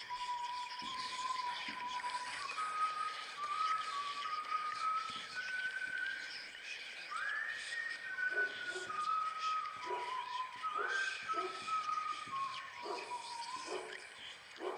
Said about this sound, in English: What on earth was that? I think it is somebody whistling. Somebody whistling? But who?